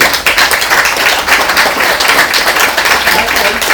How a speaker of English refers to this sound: She passed, and give a clap